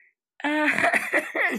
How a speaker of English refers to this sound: I'm trying to laugh, but I'm just coughing. Sorry, I'm dying.